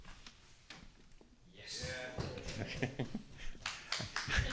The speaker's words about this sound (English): Yes. Okay. It says applause. I heard the ritualistic thumping of our cushions.